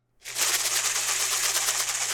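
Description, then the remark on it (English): A snake-rattle sound effect made by two women performers shaking rice during the short play Snakes by Jen Hooja: a dry, rapid, hissing rattle that starts abruptly after a brief pause and continues steadily and loudly, with no voices. “So let's hear those rattles, ladies.”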